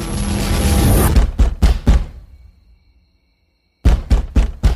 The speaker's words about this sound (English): Open up! I don't want to knock this door down, but I will.